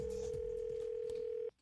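A single steady telephone tone drones for about a second and a half as a call is placed to an office, then cuts off abruptly, leaving faint line hiss. No one speaks.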